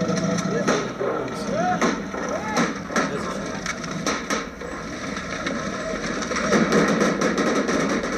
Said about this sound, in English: American bodyguards rained rapid fire from the car behind. They hit their mark.